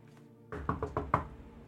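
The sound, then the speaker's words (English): Five firm, evenly spaced knocks on the door of a room next door, fairly loud, with no voices present and only a low background hum before and after. “I'd probably go and knock on the door.”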